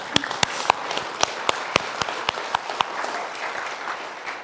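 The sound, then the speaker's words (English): A crowd applauds steadily, with a few sharp, evenly spaced claps standing out above a dense wash of hand-clapping that holds at a moderate level throughout. “I started clapping for you, of course, but more importantly, we need to clap for God.”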